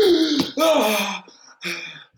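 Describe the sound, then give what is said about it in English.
A man imitates with his voice the sharp, involuntary gasp of entering icy water for the first time: a loud, strained intake of breath breaking into a couple of ragged, moaning bursts, with no speech around it. “Imagine you go for the first time into icy water.”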